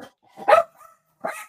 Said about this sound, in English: But anyway, the dog's barking.